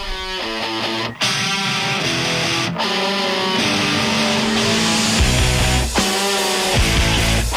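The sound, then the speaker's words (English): A new car roars past at speed, its loud engine revving up and dropping through several gear changes with a harsh, squealing edge, continuous with no talking. “You like my new car?”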